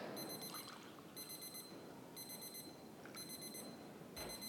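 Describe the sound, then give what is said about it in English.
A kitchen timer alarm, timing an Eva Solo coffee brew, beeps in quick, shrill bursts that repeat about once a second over a steady hiss of trickling liquid in the background. “So that's my timer for the Eva Solo's report.”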